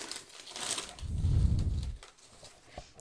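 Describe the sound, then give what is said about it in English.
Crisp, crackly crunching of someone chewing chips, with a dense burst of bites in the middle and a few scattered sharp crackles afterward. No one speaks. “Well, I'm going to eat some chips then.”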